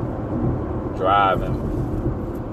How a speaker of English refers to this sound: let y'all know it's a good sunny day over here in Baton Rouge, Louisiana. I'm in my car